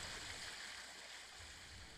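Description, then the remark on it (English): A steady rush of water as a very big ship cruises through the deep blue ocean, its hull cutting through the waves it makes, with a constant hissing wash and faint low rumbling beneath, no voices. “They are very, very big, cruising through the deep blue ocean, making their very own waves as they travel.”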